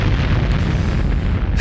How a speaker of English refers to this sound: Another explosion.